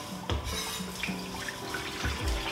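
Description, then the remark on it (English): Liquid pours steadily from a whole can into a pot while cooking, a continuous gurgling splash with a few low knocks and clinks of metal, moderately loud, with no talking. “Oh, it's liquid. Okay. Try not to wear it. Put a whole can in there.”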